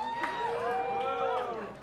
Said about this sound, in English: Some people booing.